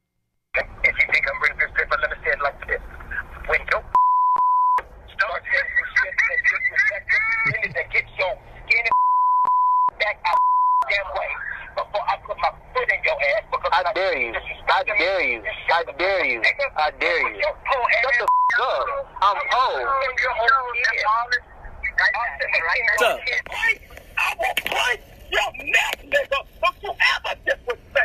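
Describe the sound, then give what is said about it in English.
Gospel singer Kirk Franklin talks over a tinny, phone-quality line, berating and threatening his estranged son in a released phone recording, his speech cut several times by steady, high-pitched censor bleeps, one short and others lasting a second or two. “It was like half of it was bleeped out.”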